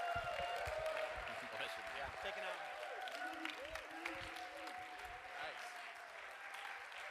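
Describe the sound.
A crowd applauds steadily to welcome a speaker at a Generation One Metro Detroit gathering, dense continuous clapping for the whole stretch, with scattered cheers and voices rising through it.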